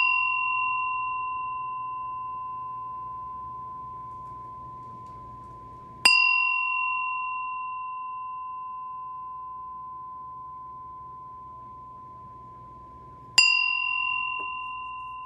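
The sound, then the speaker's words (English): A meditation bell is rung three times to begin a meditation: a pure, sustained tone that slowly fades, then two more strikes about seven seconds apart, each bright and resonant, with no voices. “I'm going to ring the bell 3 times, and we're going to take 3 deep breaths, and then we're going to do a meditation.”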